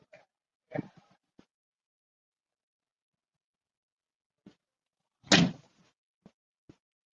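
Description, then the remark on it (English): A door is handled and then shut with a solid thud, preceded by a few faint clicks and knocks from the latch and frame. “And let me close the door.”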